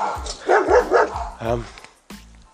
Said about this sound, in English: Yes. Yes, Archie, very good guard dog.